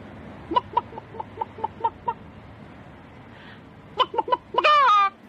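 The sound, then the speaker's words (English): A voice imitates a chicken: a run of short, evenly spaced clucks, a pause, then a quicker burst of clucks ending in a drawn-out, rising squawk. Fairly loud. “And then you just hear someone doing a chicken sound.”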